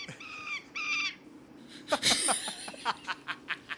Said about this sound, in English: These are Western birds